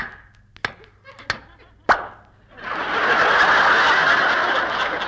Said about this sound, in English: Oh, my goodness, he swallowed the cork. Jack! Don't get excited, Mary. I'll pat him on the back.